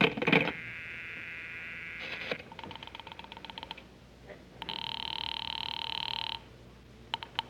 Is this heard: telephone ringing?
yes